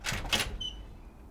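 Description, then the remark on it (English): A door with flowers around it is unlocked and opened: two quick sharp clacks from the lock, followed by a brief high-pitched creak as it swings, with no voices. “Now, open the door because I want a cup of tea.”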